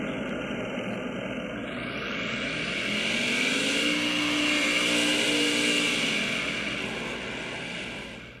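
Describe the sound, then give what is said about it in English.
A pack of race car engines roars as they accelerate at a race restart when the green flag goes back in the air, the pitch climbing and the noise swelling to a loud peak midway before easing slightly. No voices are heard over the continuous roar. “And the green flag is gonna go back in the air. Let's crank it up!”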